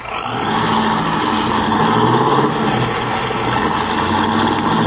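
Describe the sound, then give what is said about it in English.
A car with faulty brakes and a sticking right-hand door speeds away in a hurry, its engine roaring loudly and steadily as it accelerates, a dense rumbling drone with shifting low tones and no voices. “Golly, he's certainly in a hurry.”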